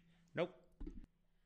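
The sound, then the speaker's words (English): Two quick coughs from someone with COVID: a sharp, harsh first burst, then a lower, rougher one a moment later, against a faint steady hum. “Sorry, that's a COVID cough.”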